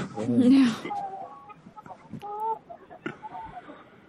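Chickens cluck, opening with a loud squawking burst, then short irregular clucks and calls that overlap and fade in and out over a few seconds.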